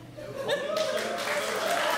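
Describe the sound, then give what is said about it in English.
An audience breaks into applause to vote for an answer: a dense, steady wash of clapping that swells in after a brief moment and holds at a fairly loud level, with some murmuring voices mixed in. “How many of you, by a round of applause, would have chosen roof?”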